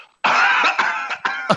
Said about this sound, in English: Oh, if those of you aren't watching, I don't know how the hell he did this, but he just coughed and a deck of cards came out of his mouth.